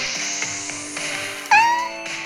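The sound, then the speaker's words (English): A black rescue cat named Annie lets out a single clear meow partway through, preceded by quieter soft background sound with no talking. “also has with her black rescue cat, Annie.”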